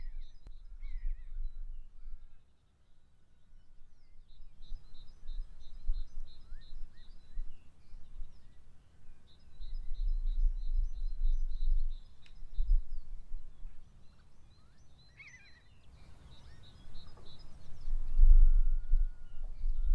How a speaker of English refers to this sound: I'm just walking through the fields between the river and Bolton Percy on my way to Appleton Roebuck. It's lovely, very peaceful, and all I can hear is birds singing.